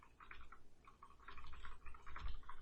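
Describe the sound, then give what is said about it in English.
Quiet, rapid clicking of keys being typed in uneven bursts, with a brief pause before the tapping picks up again. No one speaks. “I hear typing.”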